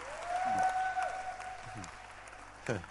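An audience claps their hands in a steady, dense wash of applause, with a sustained high whistle-like tone ringing over the first second and a few brief voices breaking through.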